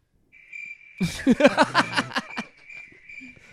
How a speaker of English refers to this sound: All right. There's so many crickets out of here